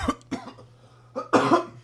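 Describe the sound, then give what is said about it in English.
A few coughs: two short dry bursts, then a brief pause followed by a louder, harsher double cough, with a faint low hum in the background. “Guy made me cough.”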